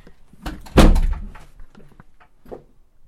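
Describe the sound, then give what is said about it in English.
The front door of a house is handled: a soft rattle of the latch, then a loud, heavy thud as it swings shut, followed by a few faint clicks and knocks. “We're in the door now. We're in our house.”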